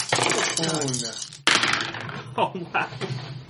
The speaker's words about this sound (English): I can't see your dice. Did you roll like all fives and sixes? I got four sixes and a five.